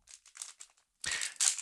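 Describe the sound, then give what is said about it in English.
A crinkly supplement packet is handled and torn open to show on camera: several short, bright crinkles in a quick irregular rhythm, then a louder, sustained crackling rip. No one speaks. “I want to open one of these, and I'm just going to show people on the camera so they understand what we're talking about.”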